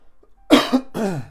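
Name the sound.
repeated coughing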